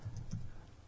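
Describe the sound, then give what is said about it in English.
Two quick, soft taps on a phone keypad as someone types a phone number, quiet, with a faint low hum underneath and no talking. “I started typing wrong.”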